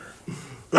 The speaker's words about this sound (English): I think I'm about to cough my lung up.